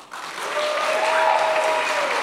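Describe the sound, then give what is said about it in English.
An audience at a live radio show bursts into applause to vote that they liked the Succession series finale, a dense, steady wash of many hands clapping that swells quickly after a brief quiet start and holds loud throughout, with some whoops or cheers mixed in. “So by sound of applause, who really liked the Succession series finale?”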